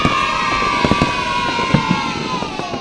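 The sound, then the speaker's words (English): Sharp fireworks bangs and crackles pop irregularly over a steady wash of crowd noise and cheering at a free fireworks event in Milford Haven on 5 November, a few louder explosions standing out near the middle. “The Milford Haven Roundtable Free Fireworks Event, Tuesday the 5th of November.”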